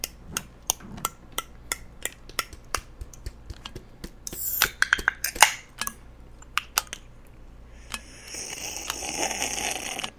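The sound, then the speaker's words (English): Someone opens a drink cup's lid: a string of sharp plastic clicks and taps, a louder crackling burst midway, then a steady, high hissing squeal to finish. No one speaks. “I'm just opening the lid to my cup.”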